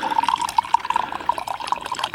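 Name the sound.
tea being poured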